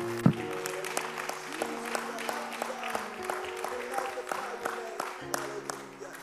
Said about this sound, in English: One more time, clap your hands to the Lord and give God some praise.